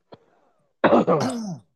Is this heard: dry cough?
yes